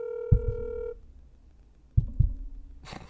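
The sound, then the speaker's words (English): A single steady electronic ringing tone from an outgoing phone call to a friend, heard once, with deep double thumps beneath it and again after, a person imitating a heartbeat, ending in a short burst of hiss. “Get him on the line.”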